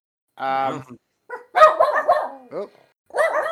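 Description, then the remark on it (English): Dogs bark excitedly in several loud bursts, with a cluster of overlapping barks in the middle and another flurry at the end. “Dogs are excited for that one.”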